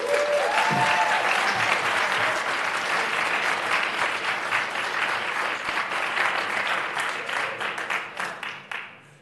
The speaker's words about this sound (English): Awesome applause.